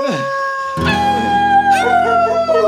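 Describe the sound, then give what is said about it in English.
Several wolves howl together, long wavering tones overlapping in a loud chorus as more voices join in partway through and the pitches slide up and down. “Oh, no, I forgot. It's Thursday. It's Wolf Night. Wolf Night.”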